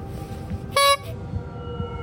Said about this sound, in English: And I don't want to hear that stupid horn honking again. I glared at the clown in the rearview mirror. He smiled back at me and gave the horn a honk that made me cringe.